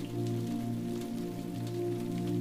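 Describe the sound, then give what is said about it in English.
Soft, steady rain pattering on a roof and streaming down windows, a continuous hiss with faint scattered drops, quiet and blended with a low sustained humming drone underneath. “You change into the softest of pajamas, all the while the rain patters on the roof and streams down the windows.”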